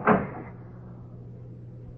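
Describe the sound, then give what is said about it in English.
A door opens with one sharp wooden clack at the start, its resonance fading quickly into a steady low hum for the rest of the moment. No voices. “Open the door.”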